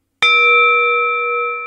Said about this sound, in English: All right, here's the gong.